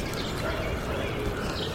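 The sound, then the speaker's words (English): A tanager sings in short, faint, high-pitched phrases over a steady hiss of background noise, with no voices present. “That's the tanager singing now.”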